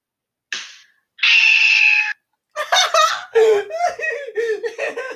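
A recording of a friend: a short yelp, then a loud, sustained high-pitched scream lasting about a second, followed by a string of choppy, breathless vocal bursts that sound like laughter.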